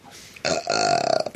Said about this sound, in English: It was him. He's a burp triloquist. Throws his burps.